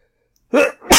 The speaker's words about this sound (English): You sneeze? Oh. Yeah, it was me. That was totally me.